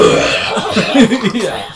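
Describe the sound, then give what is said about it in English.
A voice imitates a wheezy smoker's cough: a string of rough, gravelly hacks with a strained, raspy edge, fairly loud and continuous for under two seconds. “Like, if there was just, like, a wheezy, like, cigarette cough.”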